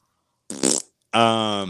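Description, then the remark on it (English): Two loud fart sound effects in quick succession, marking the official Shower Fart Game: a short, sputtering burst followed by a longer, steady buzzing blast that holds for about half a second, isolated. “This is the official Shower Fart Game.”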